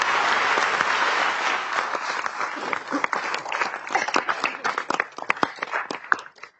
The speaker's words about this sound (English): Starting next year, thanks to Representative Brady and others, single-use plastic bags will be a thing of the past in Delaware. And I think that deserves a round of applause as well.